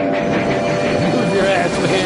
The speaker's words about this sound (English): Can you remember this movie? Die Hard? No. It's the train scene in Stand By Me.